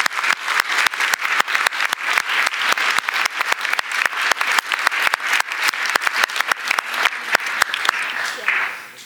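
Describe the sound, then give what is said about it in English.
A church audience claps steadily for the people who came to the front, with dense, sharp handclaps overlapping into a continuous roar of applause that stays loud throughout before tapering off at the very end. “Let's just give them a hand.”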